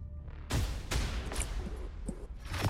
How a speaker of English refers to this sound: You can also hear more galloping, as it appears more of the city watch are headed in this direction.